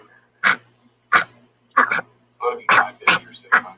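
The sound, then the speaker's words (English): A dog lets out a string of short, husky, cough-like barks, about seven in quick, uneven succession, fairly loud over a faint low hum. “That's his bark. It's sort of like a cough.”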